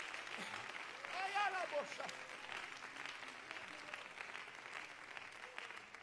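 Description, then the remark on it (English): A crowd claps hands unto the Lord in a dense, steady wash of applause that runs the whole time, with a brief raised voice or shout rising above it near the start. “Could you clap your hands unto the Lord?”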